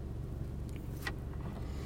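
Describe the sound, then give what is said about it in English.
A car engine idles, kept running to power the air conditioner, with a steady, low rumbling hum, unbroken throughout, with a couple of faint higher clicks or squeaks briefly rising above it. “I want my eyes to relax and then turn the engine off. Oh, it has to be on for the air conditioner, babe.”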